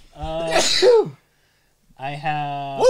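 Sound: sneeze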